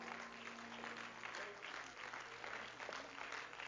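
An audience claps their hands to the Lord in steady, dense applause lasting several seconds, the many overlapping claps blending into a continuous roar with a low hum underneath.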